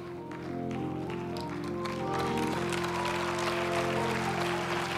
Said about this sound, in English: Some of you clapping in faith, but just go ahead.